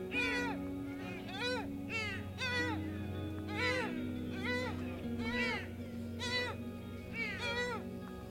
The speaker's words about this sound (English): Kind of far away from the mic, but that is a deer.